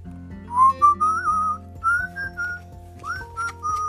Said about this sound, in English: I hear a zookeeper whistling in my ear.